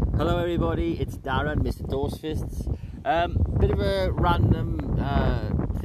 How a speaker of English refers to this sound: if you hear the odd wind, I do apologise, it's just the wind outside.